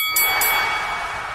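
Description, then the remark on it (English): A wrestling ring bell clangs twice in quick succession, its bright metallic ring hanging on steadily and fading only slightly, with no voices over it. “All right, wait for the bell.”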